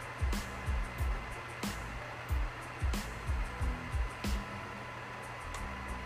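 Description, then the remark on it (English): A computer cooling fan spins up and roars loudly as the computer freezes, with a steady, airy whoosh, while faint low thumps and brief clicks recur every second or so underneath. No one speaks. “And as you can hear, the fan goes way up.”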